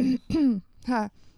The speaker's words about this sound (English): We're sitting here coughing into the mic, and it's like, no, guys, we're okay. We're okay. We promise. We're just laughing way too hard.